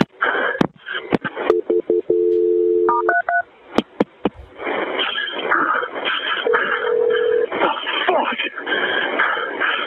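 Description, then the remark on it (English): Telephone dialing over a phone line during an emergency call in Coronado: a steady tone followed by a quick series of short keypad beeps as the call is transferred to the fire department, then muffled voices talking on the line with occasional background tones. “Let me get the fire department on the phone to help you, okay?”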